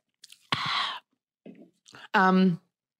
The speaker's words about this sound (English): So let me just sip my Coca-Cola before this one.